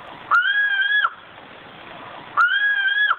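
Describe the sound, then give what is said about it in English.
Two drawn-out, moaning calls of a Sumatran ground cuckoo, each lasting about three-quarters of a second with a steady mid-high pitch and rich overtones, separated by a pause over a faint hissing background. “Peter, before I say goodbye to you, let's listen to the Sumatran ground cuckoo one last time.”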